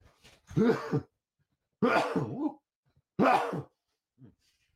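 Three loud sneezes in a row, each a sharp breathy burst with a voiced, wavering edge, spaced about a second apart, followed by a faint sniff.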